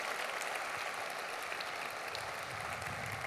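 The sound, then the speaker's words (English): A crowd applauds County Council members and mayors and council members from throughout Cuyahoga County, a steady, dense wash of many hands clapping at once with no pauses, holding an even, moderately loud level for about three seconds with no voices above it. “Give them a round of applause for how they work.”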